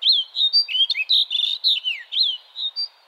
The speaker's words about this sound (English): Then, from a rocky outcrop, a flashy white songbird with black wings shoots straight up in the air before cutting loose his spirited phrases. This male snow bunting repeats his song flight every few minutes in his quest to attract a mate.